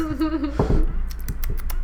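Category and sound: sound effect, keyboard typing sound effect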